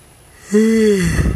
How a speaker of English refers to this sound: God damn, I got the yawns today.